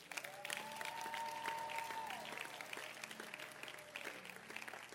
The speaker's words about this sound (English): That a lot of the sisters who sang in the choir, let's clap for the choir, by the way.